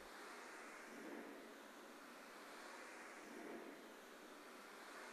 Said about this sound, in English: The first little sounds you begin to hear in this song are these light ocean waves, and that stays consistent as kind of the white noise underneath the entire track.